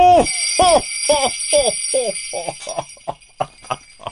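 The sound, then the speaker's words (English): Real bells ring in a steady, rhythmic pattern of about nine strikes, with a shimmering high tone sustained underneath. The ringing starts fairly loud and grows lighter and more scattered toward the end. “Those are real bells, by the way.”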